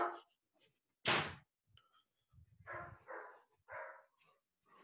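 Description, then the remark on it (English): A dog barks in a quick run of short, sharp yaps, fairly loud, with a heavy thud of a door being shut just before. “Oh, fuck's sake, let me shut this door, stupid dog.”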